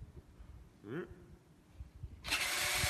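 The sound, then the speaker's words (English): A chainsaw starts up. A short rising whir comes first, then the engine bursts into a loud, steady, buzzing roar that runs to the end, with faint voices in the background. “And don't mind the chainsaw that comes up here in a second.”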